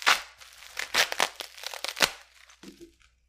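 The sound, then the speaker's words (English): Loud tearing and crinkling of packaging material as a package is ripped open, a rapid series of ripping and crunching bursts over about three seconds that trails off at the end. “Was trying to open it before you hit the record button. Just rip it.”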